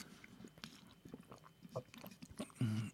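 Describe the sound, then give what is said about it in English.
A quick sip from a drink, close up, with soft wet mouth clicks and slurping noises and then a short low swallow or satisfied hum at the end. Quiet, and no one speaks. “Let's go ahead and take a quick sip.”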